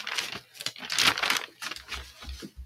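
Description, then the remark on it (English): Paper pages rustling and crinkling as someone looks through them to look something up, in a quick, irregular series of crisp, papery bursts, moderately loud, with a few soft low thumps near the end and no voices. “What are you looking through, a novel?”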